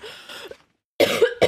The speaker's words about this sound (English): Stop coughing. I swallowed my spit. Be more careful with your spit when you sleep.